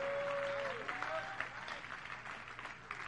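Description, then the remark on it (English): Many people clap their hands together to praise the Lord in a steady, dense patter that fills the whole stretch. A brief sustained tone glides down under the clapping at the start. “Oh, clap your hands and let's praise the Lord today.”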